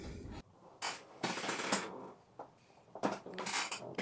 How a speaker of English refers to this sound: Ah, the creaking of the chair that heralds someone's return to their desk. You see, every time I listen to it creak, I think I could buy myself a new desk chair. But this one is just so damn comfortable.